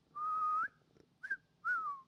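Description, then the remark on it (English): A person whistles a short tune: one long, steady note, then a brief chirp, then a gliding note that falls away. The whistling is clear, with no talking. “Best whistle I got right there.”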